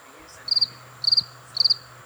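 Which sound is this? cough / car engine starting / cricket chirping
cricket chirping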